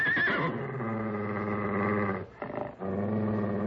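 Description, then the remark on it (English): A loud stallion neighs in one long, harmonic-rich call that starts high and shrill, then drops into a sustained rough whinny, cut by a brief break before a final snorting burst. “The stallion, he's coming in for the kill.”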